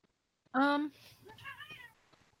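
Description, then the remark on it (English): A cat gives one loud meow, followed by a softer, drawn-out wavering meow with a faint chirp near the end. “Hi, cat. There she is.”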